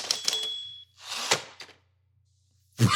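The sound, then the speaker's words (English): A typewriter sound effect: a quick burst of clacking keystrokes with a ringing bell tone, a sliding carriage-return sweep, then a single loud clack after a short pause. No one speaks. “That's my sound effect for like typewriter, like you're typing something in.”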